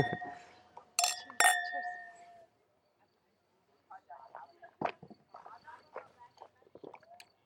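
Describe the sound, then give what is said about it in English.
Wine glasses of Secco clink together twice in a toast at a winery, each touch ringing out with a clear, sustained bright tone before fading; after a pause, soft voices murmur. “Okay. Cheers. Thank you very much. Chin chin. Chin chin.”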